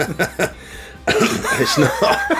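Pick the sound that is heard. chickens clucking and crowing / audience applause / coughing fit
coughing fit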